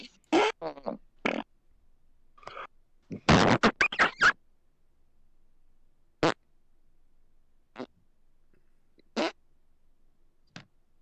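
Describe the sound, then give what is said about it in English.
A voice imitates fart sounds, blowing a string of wet, sputtering raspberries: a quick flurry at first, a dense burst in the middle, then a few scattered single blasts with pauses between. “We had like a week or two to come up with topics and we didn't, so now we're just making fart noises.”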